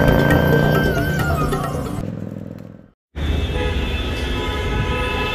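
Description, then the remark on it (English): Dense, loud city street traffic in the middle of Mumbai, India, opposite Victoria train station, with engines rumbling and car horns honking over the din. A brief cut to near silence interrupts the noise before the traffic resumes just as busily. “So here I am, stood opposite the famous Victoria train station in the middle of Mumbai, and I think the most lasting impression, or the initial impression, is just the sheer noise of the traffic and the people and the bustle and the chaos.”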